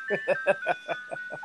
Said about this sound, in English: Yeah, we're on site right by an ice cream truck.